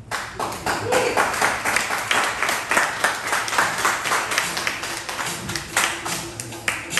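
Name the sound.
audience applause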